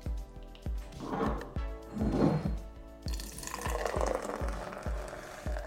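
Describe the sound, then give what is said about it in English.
Citrus City Orange Pale Ale glugging into a pint glass, a steady train of low rhythmic gulps about three per second, with a brighter fizzing splash building as the glass fills and forms a frothy head. No one speaks. “So this is a Citrus City Orange Pale Ale.”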